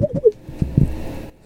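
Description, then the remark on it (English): Someone imitates dripping water with their mouth, mimicking the raindrop or dripping faucet sound heard when a phone call starts with a hold, like the Skype call sound: a quick run of short, hollow, pitched plops followed by a few softer scattered clicks and pops, with no talking. “The raindrop sound. The dripping faucet sound.”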